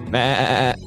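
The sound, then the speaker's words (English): A single loud bleat lasting under a second, with a wavering, quavering tone, is a human voice imitating a sheep. “Do you know how to do a sheep impression? If so, I'd like to hear yours now.”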